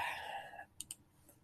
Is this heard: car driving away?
no